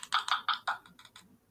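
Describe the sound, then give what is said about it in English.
Quick, irregular clacking of keys on a laptop keyboard, about eight crisp taps in a short burst, fairly quiet, with no voices. “I'm like thinking two and three moves ahead, and I keep typing the same stuff in.”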